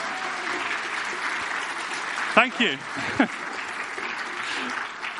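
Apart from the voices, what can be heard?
audience applause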